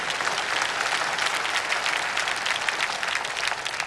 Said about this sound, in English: Thank you. Thank you. Clap for him. Wait.